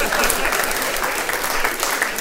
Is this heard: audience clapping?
yes